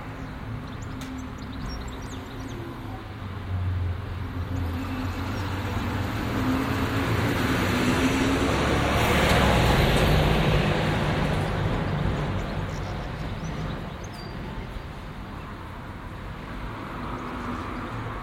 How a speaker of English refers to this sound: I live in Wimborne Minster, a small town in southern England. Much of the soundscape is rather typical of towns of this size, and it's really dominated by the sound of traffic.